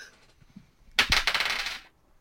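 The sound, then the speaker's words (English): A quick clattering burst of dice tumbling and rattling across a table, lasting about a second before settling into quiet. “I need a new dice for this one.”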